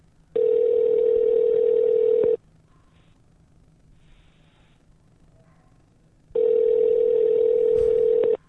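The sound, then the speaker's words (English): An outgoing call's ringback tone sounds twice, each a steady, evenly pitched buzz lasting about two seconds, separated by a quiet pause of roughly four seconds with faint background murmur. “How are we looking? It's ringing.”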